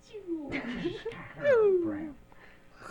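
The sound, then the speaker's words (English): A Capellan Power Cat, escaped from its destroyed cage, yowls in loud, drawn-out wails that slide downward in pitch, one rising over a busy, noisy commotion before trailing off near the end. “We've destroyed the cat's cages.”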